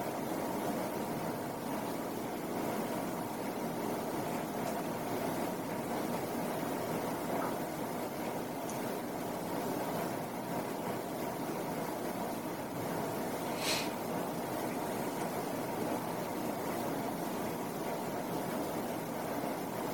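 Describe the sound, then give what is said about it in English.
A steady, even hum of air conditioning runs throughout, a broad constant wash of noise with no change in level and only a couple of faint brief clicks, with no talking. “Now, pay attention simultaneously to the sound of the air conditioning and the sensations in your right hand.”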